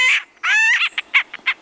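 A woodpecker calls: a harsh, nasal squawk followed by a quick string of shorter, clipped chattering notes, loud and clear with no other sounds around it. The woodpecker is pounding at the shingles of a cabin roof in California.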